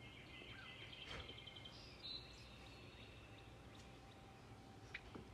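Faint birds sing over a soft hiss, with thin high chirps and a steady whistled tone. A couple of sharper calls stand out near the middle and end, and no one speaks.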